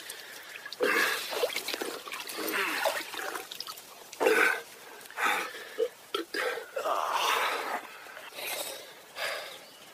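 Wet slurping and gulping in irregular bursts as someone drinks from a pool of water, with small splashes and dribbling trickles between sips, plus an occasional snort-like breath.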